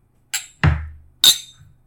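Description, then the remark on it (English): Glasses clink together in a toast during an Old Forester bourbon tasting, three sharp taps with brief bright ringing, one landing with a duller knock. “Gentlemen, cheers. Cheers.”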